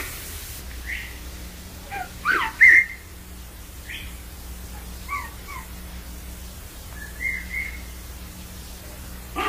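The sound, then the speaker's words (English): Short, thin whistles trade back and forth in the woods at irregular intervals, some rising and some falling, over a steady low background hum, with no talking. “All right, we have whistle interaction.”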